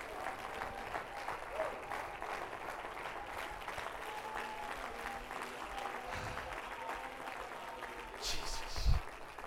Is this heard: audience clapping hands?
yes